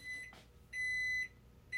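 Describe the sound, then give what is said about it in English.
Microwave beeping: a steady, high-pitched electronic tone sounds in bursts, first a short beep, then a longer half-second one, then another starting. A brief soft rustle comes between them, and no one speaks. “Okay, microwave.”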